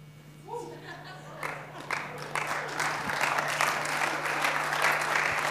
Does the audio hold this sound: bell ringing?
no